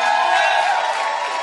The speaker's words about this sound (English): Oh, your clap is very anemic. Anemic. Your clap. Your clapping is anemic. Wow. Why don't you add shouts to your clapping when you clap?